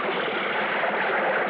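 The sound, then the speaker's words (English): Water rushes and splashes steadily as a skin diver surfaces from a deep hole, a continuous churning wash with no pauses and no voices. “Then finally I came back up to the surface.”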